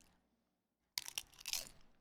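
After a moment of near silence, loud, close-up crunching of tortilla chips bursts in: a quick series of crisp, brittle bites and chews lasting about a second, with no talking.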